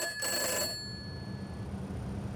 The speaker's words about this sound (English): Catherine's mobile phone rings. It is from one of her friends. Catherine hesitates before answering the mobile.